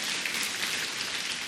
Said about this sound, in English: Yes, church, why don't we give the Lord an applause for what He has done? He is exalted forever.